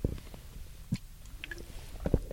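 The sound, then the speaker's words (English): A few quiet sips of water with soft wet mouth noises and a swallow, brief clicks scattered over about two seconds, no talking. “Let me take a sip of water here quick.”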